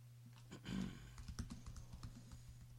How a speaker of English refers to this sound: Busy typing.